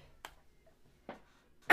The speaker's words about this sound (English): I gotta sneeze.